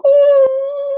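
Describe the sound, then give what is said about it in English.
A person imitates a wolf howl, holding one loud, steady, high-pitched voiced note for about a second with little change in pitch. “And then I will be literally able to howl at the moon.”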